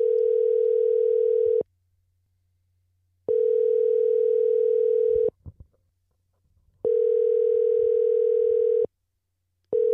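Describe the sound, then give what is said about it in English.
A telephone ringback tone while calling someone: a steady, buzzy hum sounding in long bursts about two seconds each, separated by short silences, repeating three times and starting a fourth, clear with no talking. “Answer the phone.”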